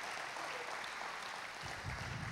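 A church audience claps to celebrate a bonus that covers a couple's entire faith promise, a dense, even wash of many hands with no pauses. Toward the end a low rumble of crowd noise rises beneath the clapping.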